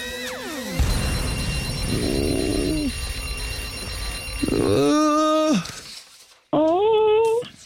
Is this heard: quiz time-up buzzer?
yes